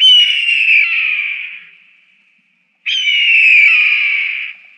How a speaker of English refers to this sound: That's not a bald eagle. What is that? That's a red-tailed hawk. A red-tailed hawk.